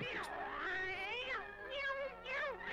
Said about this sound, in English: Meow meow meow meow. A lot of cat sound effects with this one.